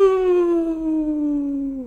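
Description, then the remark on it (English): A person gives a final 'awoo' wolf howl at the end of a show: one loud, sustained vocal tone lasting nearly two seconds, holding steady and then sliding gradually downward in pitch. “I guess I would just ask for one final awoo.”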